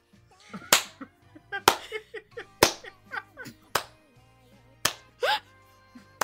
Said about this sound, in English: Wait, who's clapping?